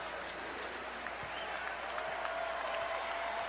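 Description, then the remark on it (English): A large arena crowd at a basketball game applauds steadily after a player grabs his 13th rebound, a dense wash of clapping and cheering that holds at an even, fairly loud level for a few seconds, with a faint whistle-like tone running underneath. “And gets a round of applause.”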